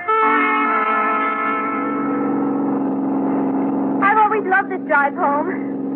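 A car engine drones steadily, holding a smooth hum, then near the end a few short, wavering squeals break in as the tires squeal while the car swings around the sharp turns of a winding road with little traffic.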